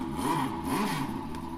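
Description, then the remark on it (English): A Porsche RS Spider race car engine sound, played by pressing a button at an interactive exhibit in the Porsche Museum, revs, its pitch rising and falling in quick sweeps, loud and steady throughout the short burst with no one talking. “Let's see, RS Spider. Another one of these cool features of the museum.”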